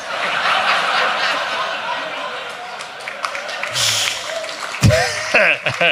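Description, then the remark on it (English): A theatre audience bursts into clapping mixed with laughter after a comedian's watch joke, the applause starting at the back of the room; a dense, steady patter of many hands that stays fairly loud, then turns choppier and thins out toward the end. “That applause started at the back of the room, then got further away.”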